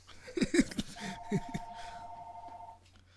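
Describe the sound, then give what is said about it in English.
An office phone gives one steady electronic ring lasting nearly two seconds, a clear mid-pitched tone. Short bursts of talk come just before it and briefly overlap its start. “That's our office phone, yo.”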